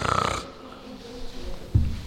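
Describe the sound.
A voice imitates loud snoring to portray the disciples asleep in the Garden of Gethsemane: a long, raspy inhaled snore with a rough rattling buzz, followed by quieter breathy rumbles and a short snorting burst at the end.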